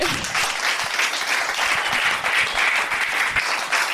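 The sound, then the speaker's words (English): A large crowd applauds steadily at the close of a live Q&A with Ray Parlour, a dense wash of many hands clapping at once that stays loud and even throughout without pausing. “Can we have a It'd big like round shower. Of applause?”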